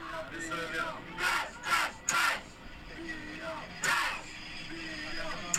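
A group of students, with whistles in their mouths, sings and cheers aboard a subway train, with rowdy bursts of shouting rising and falling over a steady rumbling background.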